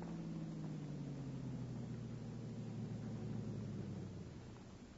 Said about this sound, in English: Car coming.